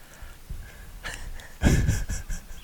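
A close-miked yawn: a breathy inhale swelling into a longer, airy exhale, fairly soft and unhurried, with no talking alongside it.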